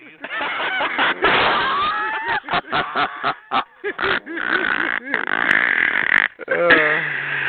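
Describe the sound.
A voice makes loud, rough grunting and squealing noises in choppy bursts, imitating a hog call, with strained pitch glides and sputtering pops between longer drawn-out wails.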